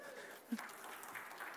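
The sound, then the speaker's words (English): An audience claps in a steady, dense patter of applause, moderately loud, with no voices standing out above it. “Oh, you can clap.”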